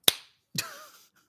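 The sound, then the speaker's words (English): Two sharp percussive slaps on orchestral strings, fairly loud, the second leaving a brief ringing, buzzy overtone that fades within half a second. No voices. “And you get the overtones when they're slapping the strings.”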